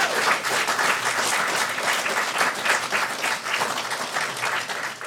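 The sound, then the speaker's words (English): A quiz audience breaks into sustained applause for the contestants at the end of a round, many hands clapping in a dense, steady wash that holds at an even loudness for several seconds with no voices rising above it. “Round of applause for all our nerds.”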